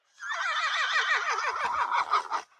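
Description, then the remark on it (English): A single horse whinny, played from a phone app of horse sounds, rings out loud, its quavering pitch wobbling rapidly up and down for about two seconds before trailing off in a few breathy snorts. No one speaks. “So you have horses, all different horse whinnies.”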